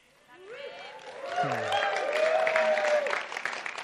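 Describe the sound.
An audience bursts into steady applause that swells after a second and holds at full strength, with voices calling out and whooping over the clapping.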